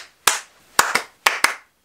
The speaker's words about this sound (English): Another popular way is the rhythm clap.